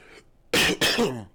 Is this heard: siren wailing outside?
no